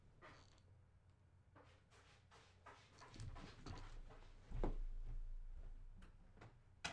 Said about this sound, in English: I'm just closing the door on him.